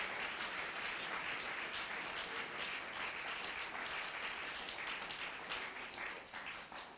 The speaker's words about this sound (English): Now clap your hands, everyone, for the Lord. Come on, clap. Clap for the Lord.